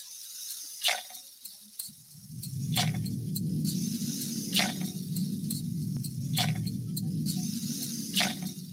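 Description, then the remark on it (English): A steady hiss of imitated rainfall with scattered sharp taps like drops, over a low rushing rumble that swells in after a couple of seconds, moderately loud. “I know there's a lot of places that maybe some of your listeners might be enduring some drought, so we're going to give you guys a little bit of rain here as best we can.”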